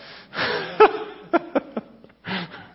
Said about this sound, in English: Are you breathing?